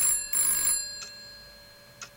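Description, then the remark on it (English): A telephone bell rings loudly in a rattling, shimmering burst with a brief break in the middle, then gives way to two short, fainter chimes spaced about a second apart. “Was that call about the elevator?”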